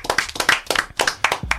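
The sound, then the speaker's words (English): A short burst of hand clapping, about ten sharp, fairly loud claps in a quick, slightly uneven rhythm, with no one talking over it and a dull low thump at the very end. “So clap it up for that one time, man.”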